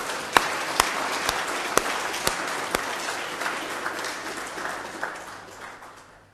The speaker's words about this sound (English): I think we're going to give you another round of applause as well.